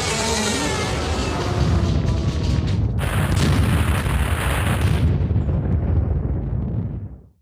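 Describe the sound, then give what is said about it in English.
Three heavy cannon blasts give way to a loud, sustained explosive roar as a depository building blows apart and goes down, the deep rumble filling the whole stretch before cutting off at the end. No voices. “three shots from Talon's mighty, mighty grown-up cannon. Yep. And the building goes down.”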